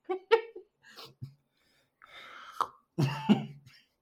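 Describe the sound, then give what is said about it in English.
A person coughs and clears their throat several times in uneven bursts, with a harsh, raspy hacking fit near the end. Nobody speaks. “He's had to mute himself to cough.”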